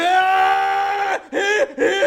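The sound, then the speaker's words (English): A voice imitates a Dragon Ball-style anime power-up scream: one long, strained, sustained yell followed by two shorter shouted bursts, loud. “A Dragon Ball voice actor has passed out doing one of the screams before.”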